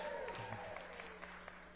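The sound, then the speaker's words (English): A brief burst of audience applause and cheering, a dense, steady wash of many hands clapping with scattered voices mixed in, holding at an even, moderate level throughout. “See, it just doesn't mean as much if I have to ask for it.”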